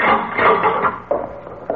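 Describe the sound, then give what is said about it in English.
A wooden door swings open with a long, grinding creak, fairly loud, followed by a couple of soft knocks as it settles. No one speaks. “Open the door.”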